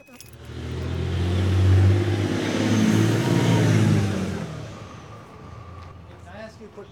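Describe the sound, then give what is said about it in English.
A car pulls away to drive downtown with a loud, rumbling engine and rushing roar that swells for a few seconds, then gradually fades as it drives off, leaving a quieter tail. “So curious that I'm going to take a pause here, drive downtown, and ask people on the streets what they'd do.”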